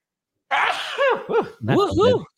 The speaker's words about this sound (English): Excuse me, I think I might sneeze.